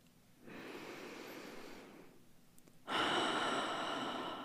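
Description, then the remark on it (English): A slow, deep breath drawn in through the nose, a short pause, then a fuller, louder exhale rushing out, with no talking. “Go ahead and take one in and out.”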